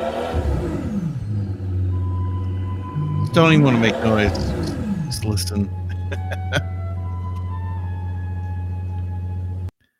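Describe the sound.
A car engine idles with a steady low rumble, then revs up and down once in a quick climbing-and-falling burst before settling back to idle. A person speaks briefly near the start.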